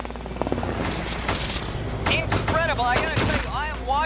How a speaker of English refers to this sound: The LAPD ultimately engaged in this for about 17 minutes of heavy gunfire. And the robbers basically win the first round while the officers are awaiting air units and SWAT teams to show up.